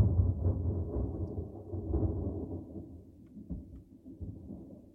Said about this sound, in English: Was that thunder? It was. Wow.